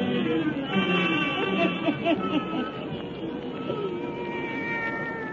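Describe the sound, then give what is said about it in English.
A black cat named Satan meows and yowls in a run of drawn-out, wavering cries that rise and fall in pitch, fairly loud, over a steady background hiss. “Let us join old Nancy, Witch of Salem, and Satan, her wise black cat.”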